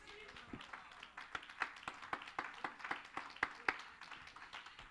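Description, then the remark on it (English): A crowd at a Christian sermon claps hands to receive the love of God, in a loose, uneven rhythm, sharp smacks landing every fraction of a second for several seconds, with faint voices murmuring underneath. “Clap your hands and say, I receive the love of God.”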